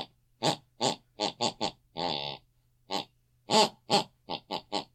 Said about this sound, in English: Let's have a listen for tonight's snoring.